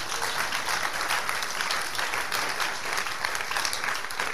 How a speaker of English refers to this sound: Where are those who clap in church?